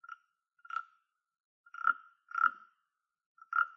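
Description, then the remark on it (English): A rasp percussion instrument scraped in five short ratchety strokes at uneven intervals, each a buzzy, croaking rattle. It is clear, with silence between strokes and no voices. “This is called a rasp.”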